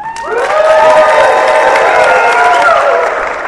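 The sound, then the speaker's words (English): A large audience at FantasyCon bursts into sustained applause and cheering, with many voices whooping and hands clapping at once, loud and steady for a few seconds before easing slightly. “Thank you, FantasyCon, for hosting us, and FantasyCon crowd for listening.”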